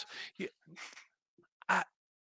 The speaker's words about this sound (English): Blood sugar may be low. Maybe for the yawning.